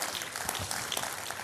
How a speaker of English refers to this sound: If you believe that, would you clap your hands just for a moment and magnify the Lord.